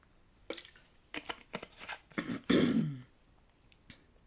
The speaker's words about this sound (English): Excuse me while I have a little drinky of water.